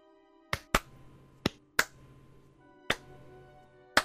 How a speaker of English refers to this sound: Is that a slow clap? A very slow clap. What it is. A very slow clap, yeah.